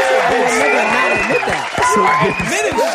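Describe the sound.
An audience breaks into a round of applause, mixed with loud overlapping cheers and whoops from many voices, keeping up a steady, dense roar for the full three seconds.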